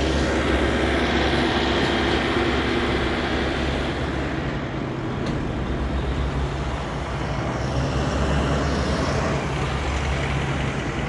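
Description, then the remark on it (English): A heavy truck passes by, rumbling loudly, its engine a thick, steady drone that holds for the whole stretch without fading. No one speaks over it. “Here comes the truck.”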